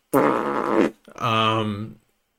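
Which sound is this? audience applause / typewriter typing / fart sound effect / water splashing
fart sound effect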